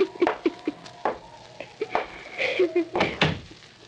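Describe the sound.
A door swings shut with a solid wooden thud near the end, after some shuffling and creaking, while voices murmur quietly.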